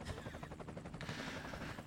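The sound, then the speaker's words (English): The rotor of the Jarrett traffic-report helicopter of the Roy and Jimmy in the morning show thumps in a fast, steady rhythm, loud, with a broad engine roar underneath throughout, at 7:46 on the West Coast. “You're going up in the Roy and Jimmy in the morning. Jarrett helicopter.”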